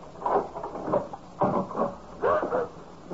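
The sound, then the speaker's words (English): A door is opened, with three short bursts of rattling and clunking from the latch and handle, separated by brief pauses. No one speaks. “I'm about to open the door.”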